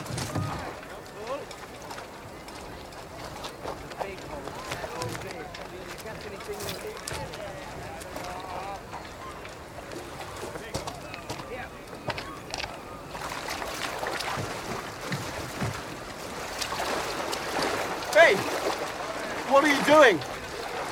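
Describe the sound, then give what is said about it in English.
A small boat moves steadily through water, with continuous sloshing and lapping. The splashing swells and sharpens near the end, where a few louder knocks and splashes stand out. “You can't just climb into my boat.”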